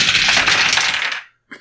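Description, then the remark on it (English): Dice are rolled in a tabletop game, clattering and tumbling across a hard table in a loud rattle that lasts over a second, stops, then gives one short final knock. “So that, my computer die, and then I get 2 dice for my description? Yes. Okay. Come on, fives or sixes.”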